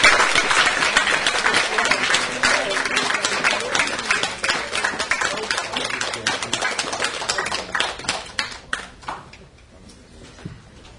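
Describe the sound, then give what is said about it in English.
A crowd gives a final round of applause, a dense wash of many overlapping claps that holds strong for several seconds before thinning out and fading to a few scattered claps at the end. “Final applause.”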